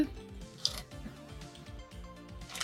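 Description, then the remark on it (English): Several dice rattle and clatter across a hard tabletop, with a sharp clack early on and scattered lighter ticks as they tumble and settle, fairly quiet, with no talking. “Oh, did I literally just throw them all again?”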